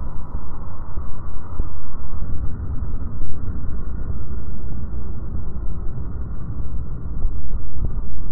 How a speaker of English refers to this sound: Michael Porter is president and CEO of HLS, Heat, Light, and Sound Research. And here's what he and the other engineers hear when they pick up shipping noise in the ocean.